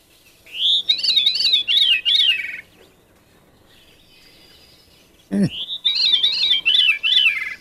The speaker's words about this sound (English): All right, here's the veery. I love the sound of it. It's a really weird sound. Veery.